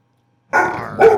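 A dog in a tavern sits up and barks twice in quick succession, loud, after a moment of silence, as the door opens; the first bark stretches out a little and the second comes sharply on its heels.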